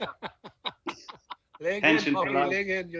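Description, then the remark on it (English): A person imitates a clucking laying hen: a quick run of short, rhythmic clucks followed by a long, drawn-out squawk, loud and alone. “Laying hen.”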